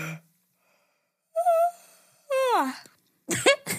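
A person deliberately makes themself yawn aloud: a held, high voiced note, then a longer groan that slides downward in pitch, followed by a couple of short, breathy exhales.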